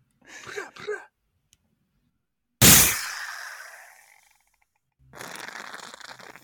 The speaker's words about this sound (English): Not really a drum roll, but an AK shot. You know, that's how we do it here in Florida.